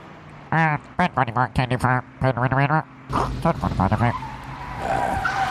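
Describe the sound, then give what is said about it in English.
A voice imitates a car, with choppy revving bursts followed by a noisy rush and a drawn-out tire screech, loud, lasting a few seconds. “Give me some car. Like, it sounds like we're outside.”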